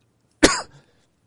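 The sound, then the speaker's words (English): A single sharp, harsh cough after many days of breathing smoke bursts out loudly, trailing off into a brief rough throat-clearing rasp, with silence before and after. “After so many days of breathing smoke, my lungs are starting to finally clear out.”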